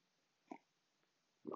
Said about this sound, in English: All right, coffee sip, and then we're going to continue with Austin.